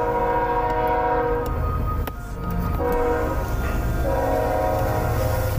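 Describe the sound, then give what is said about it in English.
A train's horn blares loud in long sustained tones over the heavy rumble of rail cars rolling past, with a brief dip midway before the horn resumes. “There's a train.”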